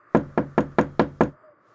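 Six quick, evenly spaced knocks on a room door, fairly loud, each with a short hollow ring, followed by near silence.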